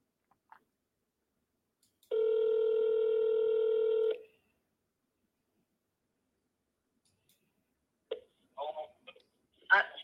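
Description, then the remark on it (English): A single steady electronic ringback tone of an outgoing phone call, lasting about two seconds, clear, followed by silence and then faint brief voices near the end. “Oh, her phone is ringing.”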